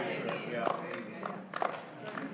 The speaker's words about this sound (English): Thanks for those seven claps. It's a good effort. Appreciate it a lot.